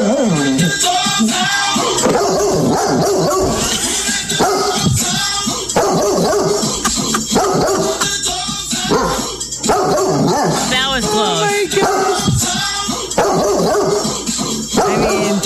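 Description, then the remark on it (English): A dog barks and yips repeatedly along to a song with loud music and a rhythmic beat, the barks landing in bursts with the song, prominent throughout. “I mean, it's just barking while the song's on.”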